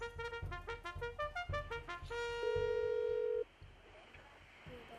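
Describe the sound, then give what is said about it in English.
A phone call being placed: a quick run of electronic dialing tones, then one steady ring tone for about a second before it cuts off, loud with no talking. “Let me get Jason on the phone.”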